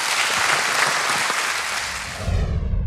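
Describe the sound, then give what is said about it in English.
A standing crowd of hundreds applauds steadily, a dense wash of many hands clapping at an even, loud level throughout, swelling slightly with low rumble toward the end. “It was a standing applause.”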